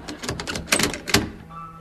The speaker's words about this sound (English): Don't panic, lad. Bolt the door, bolt the door.